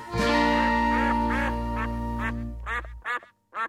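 A duck quacks repeatedly in loud, nasal bursts over a steady low hum, then a few separate quacks ring out clearly on their own at the end.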